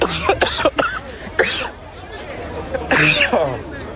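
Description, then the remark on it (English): Several people cough harshly in repeated bursts, loud, with a cluster early, another in the middle, and a heavy fit near the end, over a murmur of agitated voices, after being hit with tear gas. “I don't know what it was that they just blew up, but this guy, everybody coughing is.”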